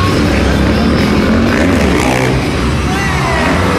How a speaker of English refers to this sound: It's the dirt bike dudes. The dirt bike dudes. We got 3 dudes out here on dirt bikes. We got a ramp. Oh, dude's ramping.